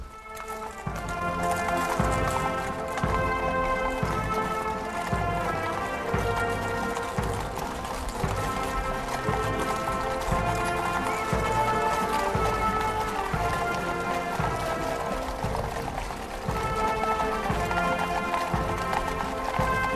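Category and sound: animal, horse hooves clip-clopping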